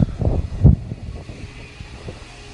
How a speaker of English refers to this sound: Oh, cool. Somebody decided to vacuum right outside my door.